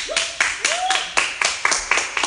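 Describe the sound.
An audience claps in a steady, even rhythm, about nine sharp, loud claps over a couple of seconds, with a brief voiced whoop rising and falling among them.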